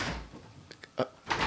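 A locked door being tried: a few quick clacks and rattles of the handle, followed by a short scraping rush of noise.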